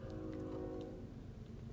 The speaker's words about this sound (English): There's a train. I don't know if you can hear it.